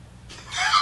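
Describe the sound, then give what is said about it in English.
A brief, loud chicken call in the background: a rooster's crow or squawk that swells in the second half of the moment, with no one talking. “I'll go out and kill those chickens.”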